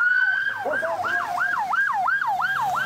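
An ambulance siren wails in a fast, repeating up-and-down pattern, loud, as the ambulance pushes through road traffic in Turkey during a rescue effort to get people out of rubble, with the low rumble of traffic underneath.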